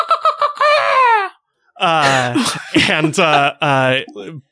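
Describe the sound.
A voice imitates the shrill, screeching scream of a night ghast in two loud bursts: a stuttering, high-pitched cry that slides downward, then after a short pause a longer series of harsh, strained shrieks.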